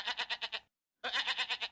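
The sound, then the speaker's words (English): A goat bleats twice, loud, each call a quavering, rapidly wavering cry, separated by a brief silence. No one speaks. “It's a goat.”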